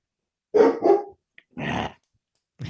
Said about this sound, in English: The dogs are getting wily. I hear them, like they must be playing with a bone on the floor or something too. Keep hearing that.